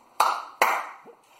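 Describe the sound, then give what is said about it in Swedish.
Two sharp, loud hand claps about half a second apart, each ringing briefly, followed by a faint, short low blip as a clap-activated lamp switches off. The clap sensor is a small microphone with a small radio transmitter. No one speaks. “Så klappar man igen då så... Så slocknar den. Här är klappsensorn.”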